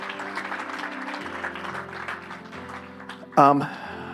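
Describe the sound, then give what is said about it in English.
A church audience applauds the praise and worship team in a steady, dense crackle of many clapping hands, while sustained keyboard chords hold underneath and a brief bright musical flourish rises near the end. “Give a quick applause of admiration and appreciation for the praise and worship team.”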